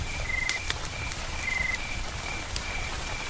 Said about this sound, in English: And now we've got to this. Rain's quite heavy. Just really nice.